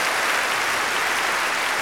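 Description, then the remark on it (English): Steady crowd applause fills the whole moment, a dense wash of many hands clapping at once, loud with no voices standing out. “Crowd agrees.”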